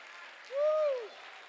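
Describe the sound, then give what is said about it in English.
An audience at a worship service claps their hands in a steady wash throughout to thank God, while one voice lets out a sustained, arcing whoop in the middle that rises and then falls away. “I wish somebody clap your hands and thank Him that He's your lamb.”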